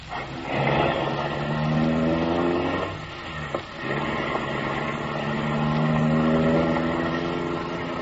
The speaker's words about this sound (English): The car motor is idling.